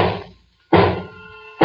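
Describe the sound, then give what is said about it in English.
Hammer blows nailing down the last of several heavy coffin-shaped wooden boxes filled with holy earth from the chapel beneath a castle: three loud, sharp strikes about a second apart, each leaving a brief metallic ring that fades before the next. No voices. “It is the last box being nailed down.”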